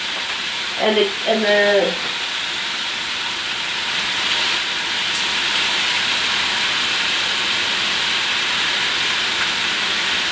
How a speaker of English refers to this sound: It wasn't the OptiGrill, it was your phone. Yeah, no. It'll make the same kind of beep for rare.